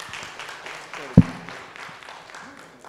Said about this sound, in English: And so anyway, I was very impressed with her. So just give her a round of applause.